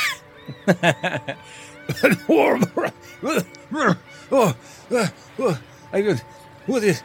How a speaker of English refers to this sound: And here you start coughing.